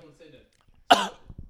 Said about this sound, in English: How much weed you smoking? I'm coughing by default. That shit, nigga, that's across the room. I cough for no reason. It's not near me.